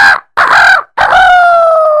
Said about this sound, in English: And sure enough, the next morning, the rooster crowed.